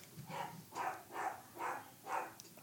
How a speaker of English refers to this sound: For those of you that are in the background, we have a dog that's deaf and keeps barking. He is laying her into her. Holy cow.